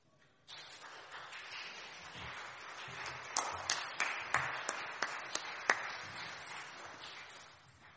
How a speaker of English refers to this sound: You don't often get applauded for your sermons, do you? It's just a measure of our gratitude, what you've done.